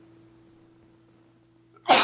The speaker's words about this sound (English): Excuse me, had to sneeze there. Bless you. Oh my God. Yeah. Did that sound like a small explosion?